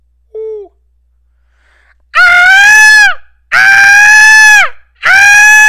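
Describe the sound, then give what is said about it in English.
A person imitates an osprey call: a short faint squeak, then three long, loud, shrill screeching cries, each held about a second and sagging downward in pitch at the end. “That was an osprey.”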